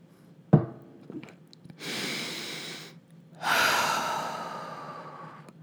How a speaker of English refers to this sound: let's do a little deep breathing